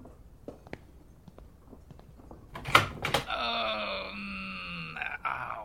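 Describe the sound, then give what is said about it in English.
A door clunks sharply, then swings open with a long, loud, groaning creak that drags on for a few seconds, preceded by faint scattered clicks and taps. “What was that? Rob, the door.”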